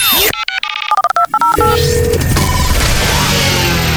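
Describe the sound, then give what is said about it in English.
A phone number is punched in as a quick run of short touch-tone beeps, followed by a longer steady tone and then a dense rush of noisy static. “They're definitely not going to be answering.”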